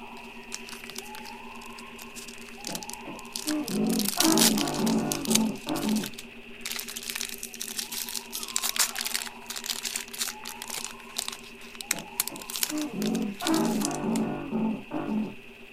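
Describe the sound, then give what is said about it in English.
Crinkly rustling as foil-wrapped card packs are shuffled, with bursts of crackle and crunch coming in irregular waves over a faint steady background hum, no voices. “So I've decided to shuffle the packs up, and they're also not sticking anymore.”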